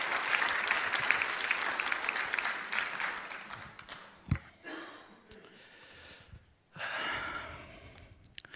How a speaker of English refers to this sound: I would like you to just give a round of applause for the worship team because they did a great job.